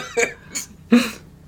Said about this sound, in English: … coughed and gagged. … coughed and gagged.